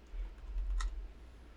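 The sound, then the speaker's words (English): Quiet typing on a computer keyboard as someone types a search for piercing pictures: a few soft keystrokes with one sharper click standing out, set against a low background hum, with no one speaking. “I would type rectal piercing.”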